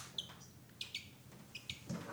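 Several small birds in a pet shop chirp in quick, high-pitched bursts, a few short tweets clustered together with brief pauses between, fairly quiet against a faint indoor background hum.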